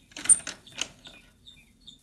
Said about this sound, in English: I will try this door.